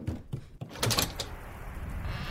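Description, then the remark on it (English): A few dull knocks on a living room door land close together, followed by a brighter thump, with a steady hiss of rain continuing underneath and no one speaking. “It's raining. Knock at the door.”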